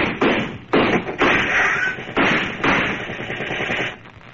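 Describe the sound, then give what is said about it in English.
A gunfire shootout with pistols against surrounding police: several loud, sharp shots crack out at uneven intervals, each with a ringing tail, then give way to a dense, rapid rattle of continuous fire. No voices are heard. “We'll give them hot lead.”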